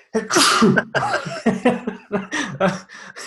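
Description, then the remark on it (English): A loud sneeze bursts out near the start, followed by a string of short breathy sounds and muffled vocal noises. “It's, sorry, I thought I was going to sneeze then.”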